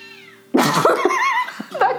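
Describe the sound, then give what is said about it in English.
A cat yowls loudly and insistently outside, a drawn-out wavering wail that rises and falls, with a quieter tonal hum beforehand and no talking. “That cat is wilding outside. I hope you guys can hear this.”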